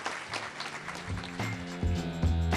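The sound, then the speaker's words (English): A crowd gives a sustained round of applause for the panelists and speakers at an Alaska Common Ground event recorded at 49th State Brewing Company. The clapping is a dense, steady clatter of many hands. Low sustained musical tones fade in partway through and grow louder beneath it. “And I'd like to hear a big round of applause for all our panelists and speakers.”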